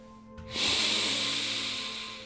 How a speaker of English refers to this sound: So instead, we will go back to our breathing.